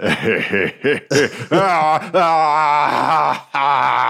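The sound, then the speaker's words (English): A voice imitates a character's laughter slowly morphing into a bestial roar: choppy, rhythmic chuckles first, then a loud, sustained, growling bellow with a rough, strained tone that breaks briefly before surging again. “JoJo's laughing slowly morphs into like a bestial roar. And I realize I can't say that without trying to do it.”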